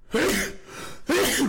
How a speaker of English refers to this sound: Oof. Bless. That's an intense sneeze, man. Yeah, bless. Sorry about that, guys.